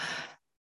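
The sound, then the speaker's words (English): A single loud breath, a short rushing draw of air in through the nose that stops abruptly, followed by silence. No one speaks. “The word is breathe. When you hear that word, it causes you to go.”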